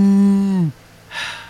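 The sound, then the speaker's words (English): A person imitates a cow for an interrupting-cow knock-knock joke, with one steady, low, droning moo that holds briefly and then drops off. A short breathy hiss follows after a pause. “You're supposed to let me say who's there, and then you interrupt a cow.”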